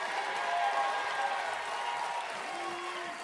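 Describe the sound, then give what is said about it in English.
An audience claps steadily in praise of Jesus, a dense wash of many hands with a few voices calling out beneath, holding an even loudness throughout. “Give Jesus the biggest hand clap.”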